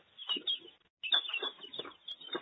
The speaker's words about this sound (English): There's 60 ducks right there. Meat ducks. Well, 50 meat ducks. And most of them are going to a restaurant.